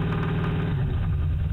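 An older car's engine idles steadily with a low, rumbling drone and faint rhythmic internal ticking, continuous with no one talking.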